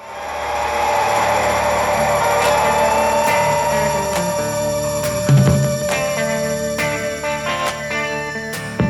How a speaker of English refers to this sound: And then the main guitar riff comes in, which is sitting primarily in the right channel.